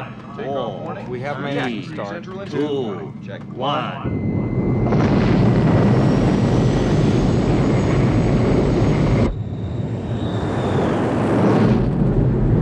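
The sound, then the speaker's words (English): A few seconds of talking give way to a jet car engine's loud, steady roar with a high whine on top as the overthruster is tested. It dips briefly, then surges back at full force. “And that's my first best scene, is just the testing of the overthruster, the jet car.”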